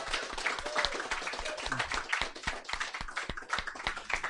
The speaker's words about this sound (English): So round of applause for Ashens for winning that competition.